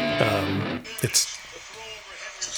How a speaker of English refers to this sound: I hear sports. Sorry, I got an alert on my phone and I didn't realize there was going to be audio.